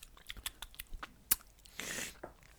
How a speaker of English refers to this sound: My wife was complaining about this the other day that because I'm a bit of a whiskey wanker, self-proclaimed. After I have a bit of a drink, I'll tend to sort of chew a bit